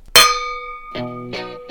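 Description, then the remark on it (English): Wine glasses clink in a toast: one bright, sharp strike rings out with sustained high tones, followed by three softer, lower-pitched taps that keep the glassy ringing going. “Cheers to that.”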